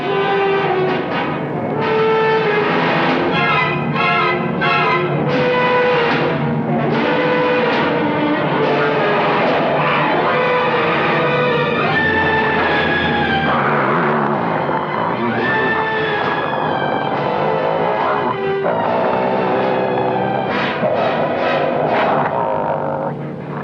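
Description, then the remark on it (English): A man growls and snarls like a wolf over a phone call from London, a loud, rough, continuous vocal rumble with wavering pitch and harsh rising and falling swells that carry on without pause and with no words. “A guy growls like a wolf.”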